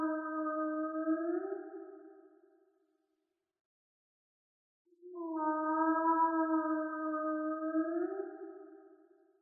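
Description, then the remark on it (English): Whale song: two long, low moaning calls with rich harmonics, each swelling and gliding slightly upward in pitch, separated by a few seconds of silence. No voices. “As the voices of the whales traveled and drifted away so beautifully like a symphony beneath him”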